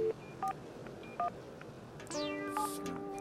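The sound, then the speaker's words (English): Three short, spaced-out telephone keypad beeps ring out clearly, then a swooping synth chord enters and holds steady tones to the end. No one speaks. “Those keyboards, who are you calling?”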